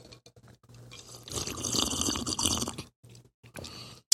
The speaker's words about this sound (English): Hit y'all a little bit of that ASMR. Big slurp. Mm-hmm. It's tasty.